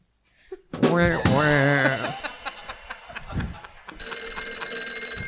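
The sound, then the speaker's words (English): A phone rings with a steady electronic tone near the end, following a brief burst of voice-like warbling and a few scattered clatters and knocks. “Okay, put your phone down.”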